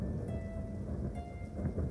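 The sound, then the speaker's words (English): Steady rain falls continuously while a low, distant thunder rumbles underneath, filling the background with a deep, even roar. No voices are heard. “He gets all the way outside, standing in the raindrops, the lightning flashing from distance, lighting from one part of the earth and shining onto the other.”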